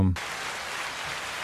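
applause

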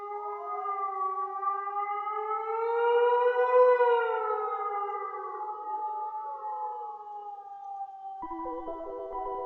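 wolf howl

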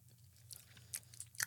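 chewing crunchy candy

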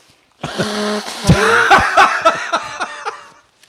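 person blowing their nose

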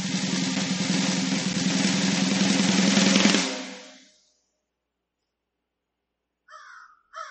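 crow cawing

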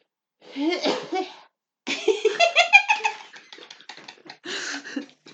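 stifled cough

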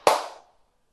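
single hand clap

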